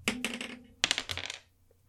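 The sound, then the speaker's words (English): A smoked-glass-looking twenty-sided die (D20) is rolled and clatters across a hard surface in two bursts of quick, bright rattling clicks, with a ringing tone under the first tumble before it settles into quiet. “I have a set of special purple, like I bought a set of purple die that are the Mechanista die, but I can't find the D20, so I'm rolling my sort of smoked glass looking one.”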